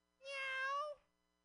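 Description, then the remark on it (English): A single drawn-out meow, imitated by a human voice from an audience when cat people are asked to make some noise, rings out clearly for under a second and then stops. It is loud, with no talking around it. “Cat people make some noise.”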